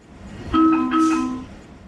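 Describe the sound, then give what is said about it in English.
A DC Metro subway doors-closing alert chime: a clear electronic two-tone signal lasting about a second, its pitch stepping down slightly, over a low rumble of train and station noise. “A specific sound for a specific subway. The door's closing.”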